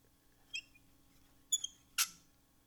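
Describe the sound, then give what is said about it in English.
A chair squeaks and creaks in three short, high-pitched bursts spaced about half a second to a second apart, the last one harsher and scratchier. No one speaks. “This chair is squeaky.”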